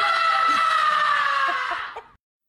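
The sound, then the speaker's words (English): A parent and kids scream together in one loud, sustained burst lasting about two seconds before cutting off abruptly, intense, with no spoken words. “In fact, two or three nights in a row, all the kids came into my bedroom and we clapped and chanted, "Everyone needs to release some steam.”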